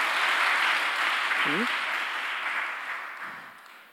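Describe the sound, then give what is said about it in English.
A crowd claps steadily for several seconds, a dense wash of many hands that eases slightly toward the end, with a brief voiced shout rising out of it midway. “praise the Lord, a big hand clap because we need the word of God.”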